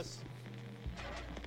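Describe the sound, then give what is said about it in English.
Soft radio static crackles and hisses steadily over a low electrical hum as a signal is being lost, with brief bursts of noisier interference toward the end; no one speaks. “Oh, static.”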